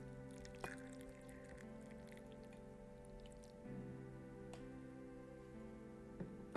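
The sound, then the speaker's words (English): Hot water is poured steadily onto tea leaves in a gaiwan, a soft continuous trickle with a few small drips and splashes, fairly quiet, with no talking. “I'm gonna pour this water into the tea.”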